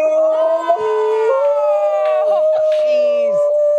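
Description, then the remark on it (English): Two dogs, Rolo and Sadie, howl to each other over a FaceTime video call, in long, sustained, wavering tones, one howl overlapping and rising and falling around the other, loud, continuing throughout without pause. “So the two dogs missed each other so much that they set up regular FaceTime chats.”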